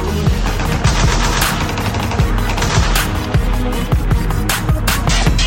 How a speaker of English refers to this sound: But then I realize I'm back home. Sounds like gunshots everywhere I go. Makes me wanna hit the floor.